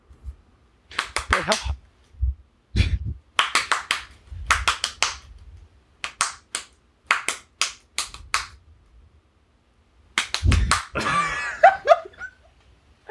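Hands clap out a tune's rhythm in irregular bursts, quick runs of sharp claps separated by short pauses, fairly loud and alone with no talking, ending in a brief scuffling noise.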